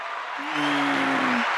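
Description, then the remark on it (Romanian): Dense, steady applause in a studio fills the whole moment, a thick wash of clapping, with a sustained low humming tone running through the middle of it for about a second. “Aplauze că m-am schimbat.”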